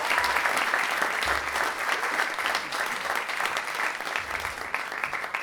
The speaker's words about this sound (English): Huge round of applause, please,